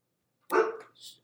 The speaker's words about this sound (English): We're going to get the dog under control right now.